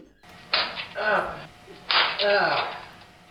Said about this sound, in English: Yo, he's 100% getting slapped with something on his ass. That's porn.